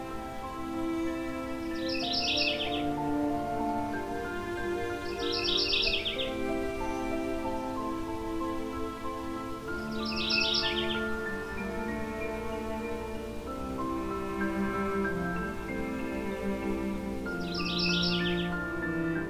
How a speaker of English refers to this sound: In these tracts, species such as this mourning warbler can be found. It's named based on the mournful tones of its song, often described as a rolling set of churry, churry, churry phrases.